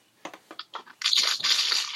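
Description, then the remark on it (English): A plastic water bottle being squeezed and handled: a few short crackly crunches, then a steady, bright crinkling that continues to the end. No voices are heard. “It's a bottle of water.”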